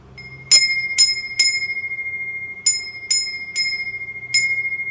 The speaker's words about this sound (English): It used to be a tradition in China, and it's still a tradition in Japan, to have these little wind bells that would sound every so often, just to carve the silence, just to make you feel aware of the silence.